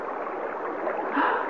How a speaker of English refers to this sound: That crater directly below us. It's filling with water. The bottom is covering completely.